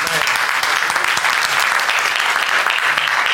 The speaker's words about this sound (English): I think you should clap for God.